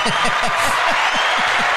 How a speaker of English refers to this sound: It's amazing. We're gonna give him a round of applause.